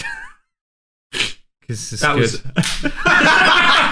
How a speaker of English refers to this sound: That was the audio. That was you slapping yourself. That wasn't you slapping me. For once. Slapping my massive head.